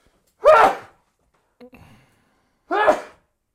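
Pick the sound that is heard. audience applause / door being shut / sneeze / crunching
sneeze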